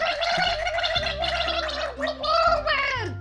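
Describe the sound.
At a pirate museum, a person gargles water while voicing wavering, sung-like tones, a bubbling, gurgly warble that rises and falls continuously for a few seconds, imitating a mermaid's singing.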